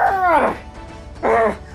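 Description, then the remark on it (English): A voice imitates a snarling creature in two loud bursts: a longer, falling growl-like cry, then a short pause and a second, briefer one. “And he starts growling at you, and he turns and he screams over in the corner, and you're like, what is he doing?”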